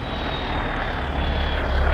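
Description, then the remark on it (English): A dump truck roars past with a loud, steady engine rumble and heavy low-end drone, a thin high whine running through it, swelling slightly toward the end. No one speaks. “Hold on, dump truck. Rock and roll, man, rock and roll. See? You guys don't like the noise?”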